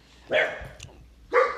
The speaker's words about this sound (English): And there's going to be random dog barks because that's just the way things go in this freaking house.